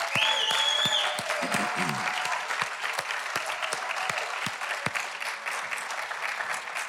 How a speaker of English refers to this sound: Stand up, stand on your feet, everybody that was out of the service this morning. Man. Rouse a round of applause for this group of people right here.